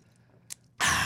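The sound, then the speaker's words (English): After a brief quiet stretch and a short hiss, someone loudly slurps a drink: a sustained, airy sucking noise that runs steadily to the end, with no talking. “That healthy slurp was brought to you by Mountain Dew Kickstart.”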